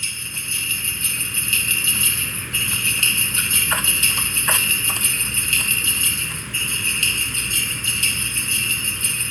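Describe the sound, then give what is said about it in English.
Jingling bells in a video game shimmer in a steady, unbroken loop for the whole stretch, with a few brief tapping clicks midway that resemble trotting hooves. No one speaks. “That's obviously just jingling bells.”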